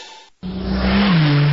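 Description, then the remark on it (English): After a brief silence, a car engine roars up loud, revving hard as it accelerates, its pitch climbing and holding in a steady, aggressive drone. “Hey, slow down, buddy. This ain't Talladega.”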